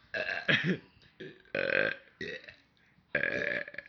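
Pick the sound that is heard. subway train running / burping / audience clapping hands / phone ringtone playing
burping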